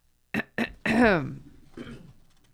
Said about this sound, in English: I started to clear my throat as a joke, and then it turned out I really needed to clear my throat.